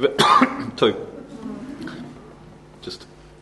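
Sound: cough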